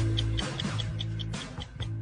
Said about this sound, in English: All right. That ticking clock is not the show Watchmen, by the way.